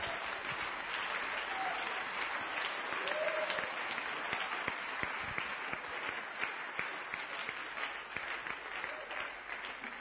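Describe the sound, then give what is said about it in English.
An audience claps their hands for Jesus during a sermon, steadily for about ten seconds, a dense wash of many hands with a few sharper individual claps standing out and brief voices scattered through it. “Are you clapping your hands for Jesus, someone?”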